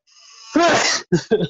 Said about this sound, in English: Also, I'm going to sneeze.